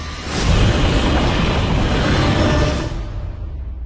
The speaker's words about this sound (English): Monarch, Legacy of Monsters. That was the voice, the roar of Godzilla that you heard at the end.